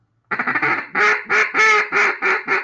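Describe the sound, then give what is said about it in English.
A handmade mallard duck call is blown, giving a loud series of about seven raspy quacks: a quick stuttering run first, then longer, drawn-out quacks in a steady rhythm. “I made a duck call for, this is a mallard.”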